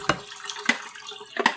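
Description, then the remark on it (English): Water from a final water stop is dumped into a sink in three short, fairly quiet splashing bursts, with a faint steady hum underneath and no voices. “Okay, I'm dumping out my last water stop.”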